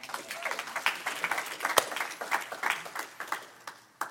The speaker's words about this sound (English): Can you give Jesus one more hand clap?